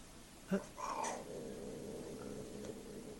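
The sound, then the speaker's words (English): A cat, one of two cats mating in a video, lets out a short strained yowl, then a drawn-out, growly moaning cry, heard fairly faintly over a low background hum with no talking. “I'm watching a video of two cats having sex”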